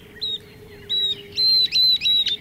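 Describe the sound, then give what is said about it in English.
A northern beardless tyrannulet, a tiny flycatcher, sings in a dry arroyo in the southwest, a series of thin, high whistled notes, each held briefly and steady in pitch, coming in a quickening run of about five over a low, steady hum. “That's a northern beardless tyrannulet singing, a tiny flycatcher with a very distinctive voice.”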